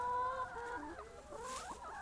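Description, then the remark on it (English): Several chickens on a farm cluck and murmur softly over one another in a steady, overlapping chatter as they lie resting in the grass in the afternoon, with no voices present. “We just wanted to give chickens as good a life as they can have whilst they're here on the farm.”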